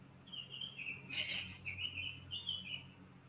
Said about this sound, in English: I love the birds chirping in the background. It just adds to the calm sereneness.